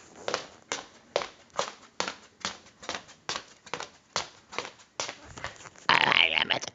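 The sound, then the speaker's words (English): Steady clip-clopping footsteps of a person walking down a street on hard pavement, about two crisp steps per second at an even pace, ending with a burst of louder rustling noise. “And I'm clip-clapping. Listen to me.”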